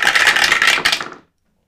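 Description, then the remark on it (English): Dice clatter and rattle briskly across a dice tray for about a second, a dense burst of small hard clicks that stops abruptly into silence. “Just roll. I'm gonna use the dice tray.”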